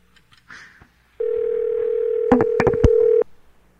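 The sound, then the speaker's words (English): A telephone ringing tone on a call: a steady electronic tone holds for about two seconds, with several quick beeps cutting across it near the end, no voices present. “Who is this? Who have we rung?”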